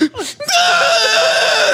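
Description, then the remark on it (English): A man on a patio lets out a long, loud, strained scream that holds steady for over a second after a brief vocal lead-in. It sounds like a voice acting out the scream. “Just on my cry screaming on my patio.”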